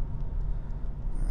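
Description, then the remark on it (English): Steady low road rumble fills the cabin of a moving car being driven to work, a constant dense hum with faint higher hiss, continuous without any voices. “You may have worked out currently in my car.”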